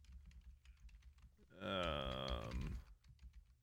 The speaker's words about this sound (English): Can you hear my keyboard clicking away? Clacking, clicking, clacking.